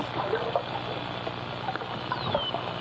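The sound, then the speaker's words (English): A synthetic 'rope' whistle, played from a keyboard to ask dolphins for a rope toy, sounds once as a thin, high tone gliding downward, faint against a steady hissing wash peppered with short clicks and chirpy squeaks. “And that's the rope whistle.”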